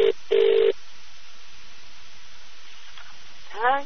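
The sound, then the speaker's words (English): Two touch-tone dialing beeps, a short one followed by a longer one, sound clearly over a faint line hiss as a number in Columbus is dialed again after a misdial, followed by a near-silent pause and a brief rising chirp at the end. “Here, let me try this one again. I dialed it wrong.”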